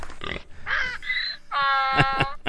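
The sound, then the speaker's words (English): A pig sound effect: a pig grunts and oinks in a quick run of loud squealing calls, several bursts back to back with short breaks between them and no talking. “Yeah, so now go give me a pig, parrot, and donkey.”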